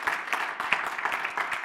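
A crowd claps in a steady, dense wash of hand claps, loud and continuous, with some sharper individual claps standing out and no speech over it.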